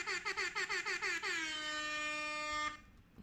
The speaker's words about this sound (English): There we go. I had to get that in there. I had to get the Claudia Williams air horn in there.